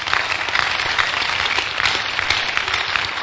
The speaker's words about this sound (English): Clap for Jesus. Good.